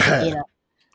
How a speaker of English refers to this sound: you're coughing. We got to disinfect right now.